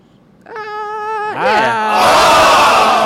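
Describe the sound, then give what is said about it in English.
A socially distanced studio audience erupts: a single held, tonal whoop rises and bends upward, then a loud wash of crowd cheering and applause swells and holds steady to the end, with no talking. “Yeah, late response for the crowd. Studio audience here, everybody.”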